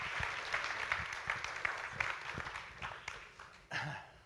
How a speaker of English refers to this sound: Will you guys give a round of applause for Sheriff Snyder? Sheree. Thank you so much, Sheree.